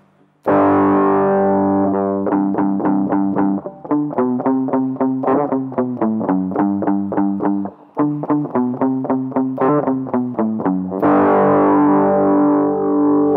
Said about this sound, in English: Reset it right now and try distortion without amplifier first.